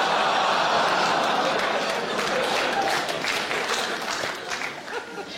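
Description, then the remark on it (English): A crowd applauds steadily, dense clapping filling the whole stretch at a loud, even level before easing off slightly toward the end. “Applauding that, you should be ashamed of yourself.”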